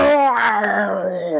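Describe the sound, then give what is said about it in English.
A person's voice imitates an animal howl: one long, loud tone that holds steady and slowly sinks in pitch, with no other sounds around it. “And then there was a howl from the Lakota plains, the lodge filled with their sounds.”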